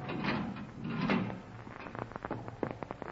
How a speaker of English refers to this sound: I kept a check on the time, and it was 20 minutes before they were due to arrive at the Marquardt building when a sound stopped me. The steel door was being opened.